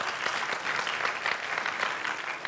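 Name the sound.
audience applauding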